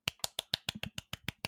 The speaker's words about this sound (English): So my golf clap is the mic against the table.